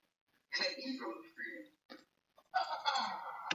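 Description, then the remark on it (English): A person imitates an eagle's screech with a raspy, strained cry, breaking into a few uneven bursts before a louder, drawn-out final shriek. “I love freedom so much I can make an eagle noise.”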